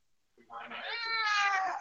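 A single drawn-out cat meow, rising and wavering in pitch, fairly loud, lasting over a second with no talking over it.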